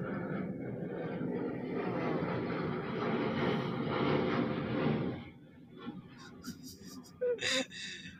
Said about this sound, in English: Some planes like to fly directly over my house. They're probably on their way to Japan or the Philippines or something.